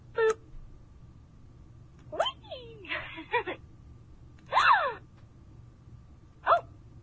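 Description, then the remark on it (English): A toy doll lets out a series of short electronic gasping sounds when a button on it is pushed, four brief bursts with pauses between them, moderately loud, with a faint background hum. “Like a gasping sound?”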